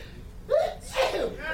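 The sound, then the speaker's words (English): A single loud sneeze: a short voiced intake of breath rises into a sharp, explosive burst, then fades quickly. “I'm gonna sneeze.”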